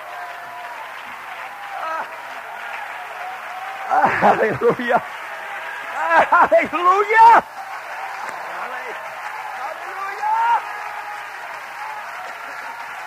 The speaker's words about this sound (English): Hallelujah. Oh, clap your hands. I feel the power and the glory of the resurrected one. in this place tonight.